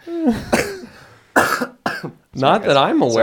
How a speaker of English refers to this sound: Sorry, guys. But I just got really upset there. That's why I started coughing.